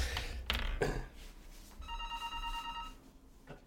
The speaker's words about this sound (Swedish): Fortsätt alldeles strax, det ringer. Jag ska kolla bara vad det är. Vänta, det ringer på hotelltelefonen. Vänta.